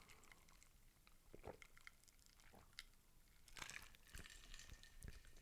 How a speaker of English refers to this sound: Maybe if I have a sip of this Four Roses and Coca-Cola.